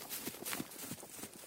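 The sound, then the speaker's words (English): Horse hooves clip-clop in a steady, quick rhythm, each strike sharp, with a faint rattle of a wagon rolling along beneath the hoofbeats, as a borrowed horse and wagon is driven quickly back toward Lansing. “He needed to quickly get back to Lansing so he could return his neighbor's horse and wagon.”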